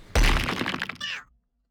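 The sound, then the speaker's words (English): A heavy stone rock crashes into someone with a loud thud, then falls to the ground and breaks apart into a second of crackling, crumbling rubble before falling silent. No voices. “It crashes into you, it does 1 harm, and falls to the ground and breaks further.”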